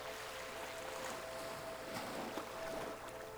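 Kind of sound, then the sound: nature, ocean waves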